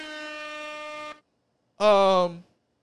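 air horn sound effect

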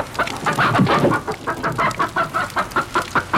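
chicken clucking

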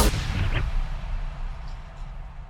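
gunshot sound effect

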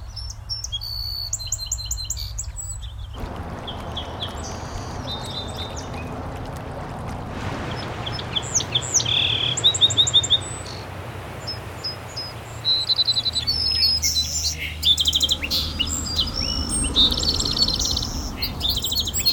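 song sparrow singing

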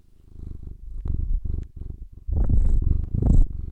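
cat purring

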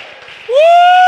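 audience clapping and shouting

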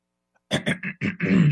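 throat clearing

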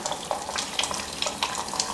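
running shower water

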